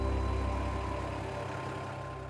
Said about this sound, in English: You see how critical the transportation is. Here's one of the trucks pulling out.